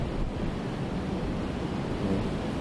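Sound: wind blowing outdoors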